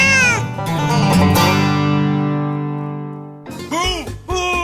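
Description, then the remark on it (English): Several cats meow at once in an overlapping, wavering chorus, their cries merging into a long sustained wail before a fresh burst of loud meows. “What about all these cats?”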